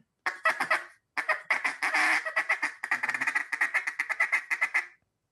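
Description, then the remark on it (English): A duck call blown in a rapid, rolling feed-call chatter: quick nasal clucks in fast bursts, a short pause after the first burst, then a long continuous run that ends abruptly. Fairly loud, no talking. “And then, of course, you have the feed call.”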